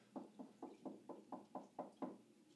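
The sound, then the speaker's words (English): A steady run of about nine knocks on a hard surface like a door, evenly spaced, each a short dull rap with no voices. “She's like, Daddy, what are you pretending to knock on the door for?”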